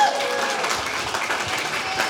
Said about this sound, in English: But before we do that, show the gentleman some love, please. Give him a round of applause.